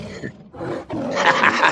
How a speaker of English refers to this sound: So I want to give you a roar over here in the diamond bed.